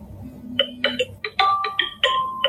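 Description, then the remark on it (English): A phone ringtone for an incoming call from a mother plays a quick sequence of bright, chiming electronic notes, a few sustained and others short and clipped, fairly loud over a low background hum. “Oh, you're ringing.”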